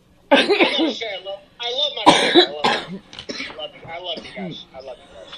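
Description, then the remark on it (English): A run of harsh coughs, several bursts in quick succession with raspy throat-clearing and breathy vocal sounds between them, loud and uneven. “When you get done coughing, let me know.”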